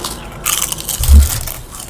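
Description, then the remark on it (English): Loud crunching of Utz potato chips eaten into the microphone, a couple of crisp, crackly bites with a heavy thump in the middle, lasting under two seconds with no talking. “Love when you eat potato chips into the mic.”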